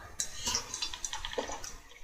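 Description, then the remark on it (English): Someone sips coffee from a mug, a few short wet slurps and faint liquid sounds over about two seconds, with no talking. “Let me just take a sip of my coffee.”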